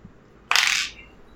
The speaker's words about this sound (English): Okay, so that's a d4 and a d8. Where are you, dice?